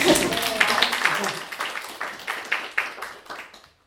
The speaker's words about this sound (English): I like applauding speakers.